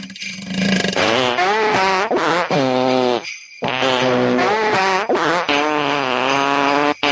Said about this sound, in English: The burping is just very cute and funny.